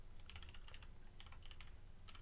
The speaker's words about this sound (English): I hear you typing.